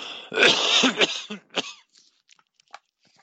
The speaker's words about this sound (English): Sorry, got a cough.